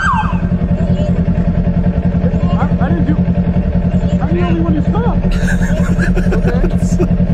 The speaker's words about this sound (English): This cop literally saw five other motorcycles blow through the red lights.